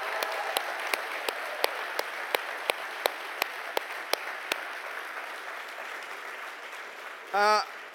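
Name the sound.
audience clapping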